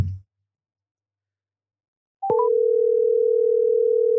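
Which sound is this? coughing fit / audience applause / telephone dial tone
telephone dial tone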